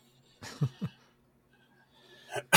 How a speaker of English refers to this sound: And I can't stop coughing. I think I have corona.